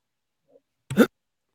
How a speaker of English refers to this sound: My dogs were going crazy because I think there's a truck outside.